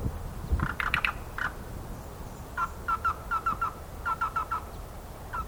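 A bird calls in a series of short, repeated chirping bursts, clustered in quick groups against a low background rumble, moderately loud with no talking.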